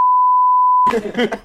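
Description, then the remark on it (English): A steady, high-pitched censor bleep, one of seven covering a spoken home address, holds for nearly a second, then cuts off abruptly as a person starts talking. “There were seven beeps in that.”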